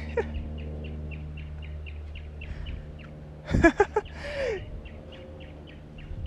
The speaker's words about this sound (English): It's a mockingbird. He's usually over here by the tree, he or she.